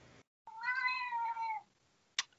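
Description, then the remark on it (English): A cat lets out one long, loud, drawn-out meow, its pitch gliding downward, followed by a brief sharp click. No one speaks. “Oh, sorry, my cat is going crazy over here.”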